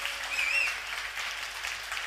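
A short round of applause: a steady, soft wash of many hands clapping, with a brief rising whistle early on and no voices.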